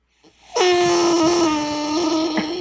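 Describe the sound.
A Bigfoot call blown lightly gives one sustained, loud moaning growl with a buzzy, reedy tone, holding a steady pitch for about two seconds with a slight waver near the end.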